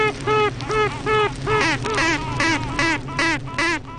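Queen honeybees toot and quack in duets during the late spring swarming season: a quick series of about eight short, nasal, pulsing tones repeats steadily over a continuous low buzzing drone of the hive, fairly loud.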